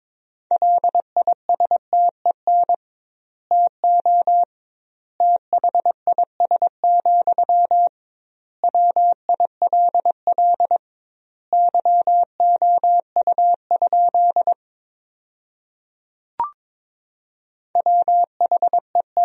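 Morse code sent at 22 words per minute with double word spacing, sending sentences built from the top 400 words: a steady, mid-pitched beep keyed into quick short and long tones, grouped into words separated by pauses, with a single click in one gap.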